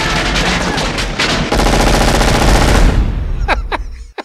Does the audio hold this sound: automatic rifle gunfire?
yes